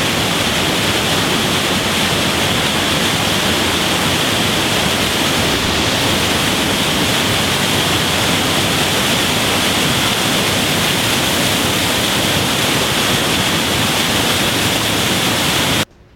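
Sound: rushing waterfall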